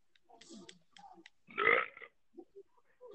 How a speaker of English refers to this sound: What? I was drinking water. How? You know, to be fair, there are times when I belch too just from drinking some orange juice and I don't know why.